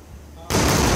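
Double sonic booms from the two SpaceX Falcon Heavy side boosters coming back to Earth: after a quiet, faintly hissing stretch, a sudden loud, sharp blast cuts in halfway through and rolls on as a heavy, sustained rumble.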